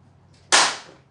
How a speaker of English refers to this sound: I need a clap in unison.